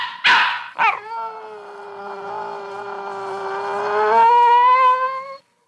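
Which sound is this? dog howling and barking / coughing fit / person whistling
dog howling and barking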